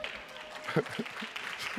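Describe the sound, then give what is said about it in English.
An audience claps in a brief, steady patter of many hands, moderately loud, with a voice cutting in briefly near the middle. “I know you're like, well, go on, clap if you're going to clap.”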